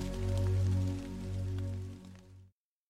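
Steady rain patters under a loud, sustained low droning hum of binaural beats, a soft continuous hiss with scattered drops, cutting off abruptly after a couple of seconds.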